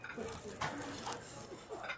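Crusty bread crunching under repeated bites, a steady run of dry, crackly crackles and rustles at moderate loudness, with faint clinks of cutlery or dishes and a murmur of voices in the background.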